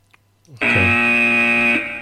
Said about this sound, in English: Okay. So take your little thing and press the buzzer.